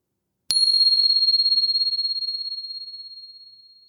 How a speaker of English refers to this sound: Settling into your meditation posture. And here comes the bell.